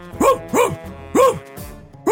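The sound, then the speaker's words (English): A person imitates Gunther, the dog from the Netflix series Gunther's Millions, with four loud woofs, harmonic yelping barks spaced unevenly with short pauses between them. “You can't do dog barking.”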